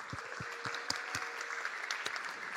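Steady audience applause: a dense, continuous wash of clapping with a few sharper, louder claps standing out at irregular moments, sustained evenly throughout.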